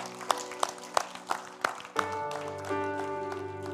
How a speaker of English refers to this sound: Can we give the Lord a big hand clap this morning?